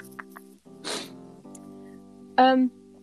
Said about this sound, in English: Can hear you playing with tape.